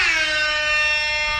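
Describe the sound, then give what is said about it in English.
A loud, blaring air horn blast holds steady for about a second and a half, bright and brassy with many harmonics, with no talking over it. “Just dropped the air horn for Fullerton.”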